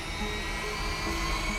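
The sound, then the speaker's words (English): A steady, droning rotor buzz of NASA's Ingenuity helicopter lifting off on Mars in April 2021, with a faint whine on top, holding an even level throughout. No voices. “More than 100 years later, in April 2021, another world saw its first powered controlled aircraft flight when NASA's Ingenuity helicopter lifted up into the skies of Mars.”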